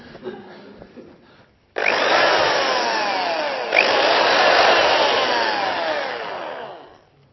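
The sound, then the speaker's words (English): A corded electric power drill, attached to mains power, starts up after a moment of quiet handling noise and whirs loudly and steadily for about five seconds, its motor pitch shifting, with a brief surge midway. “And don't say it's a dentist's drill. It's a drill.”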